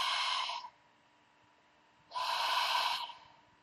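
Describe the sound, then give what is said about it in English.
Two breathy, hissing exhalations, each cut off abruptly as a person closes the vocal folds in the throat, separated by about a second and a half of near silence. Moderately loud, with no talking. “when I'm starting to open my vocal folds again, I could feel a slightly warm breath still coming out of my body. So experiment with this closing and opening and closing and opening and closing and opening this space.”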